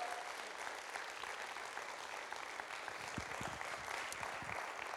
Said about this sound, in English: Come on, give a Lord a clap and a shout.